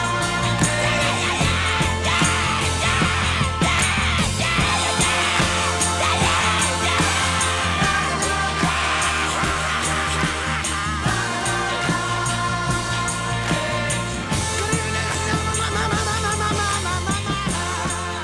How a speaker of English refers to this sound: voice comes up a little bit in the mix for one last screaming ad-lib in there. And then that song just rides out.